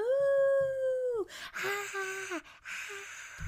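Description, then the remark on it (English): One voice imitates a cheering crowd: a long, steady, high-pitched hoot like a howl, then breathy, hissing whoops and wavering cries, loud and without any words. “That was my crowd noises.”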